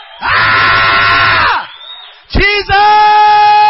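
A crowd of people yelling and shouting together to God at full volume, a sustained roar that briefly dips, then surges back with loud, overlapping whoops and cries.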